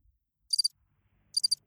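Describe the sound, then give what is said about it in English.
A crickets chirping sound effect played from a Rodecaster Pro 2: two short, high-pitched bursts, each a quick trill of about three pulses, separated by a brief silence. Clear, with no voices. “That's crickets.”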